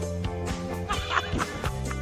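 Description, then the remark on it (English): A series of nasal duck quacks sounds in quick, uneven succession, loud, with no talking over them. “Quack, quack, quack, quack. Duck hunting.”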